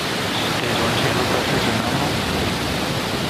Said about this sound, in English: The TurkSat 5A mission blasted off aboard a Falcon 9 rocket from Space Launch Complex 40 at the Cape Canaveral Space Force Station in Florida. 10, 9, 8, 7, 6, 5, 4, 3, 2, 1, 0. Ignition. And liftoff.